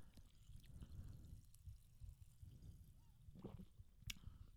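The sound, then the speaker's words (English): A bubbly drink is poured into a glass as a second pour, in a soft, steady stream with faint fizzing crackles and a few small clinks near the end. Quiet, with no voices. “When you poured it, it seemed like it still had the same amount of bubbles.”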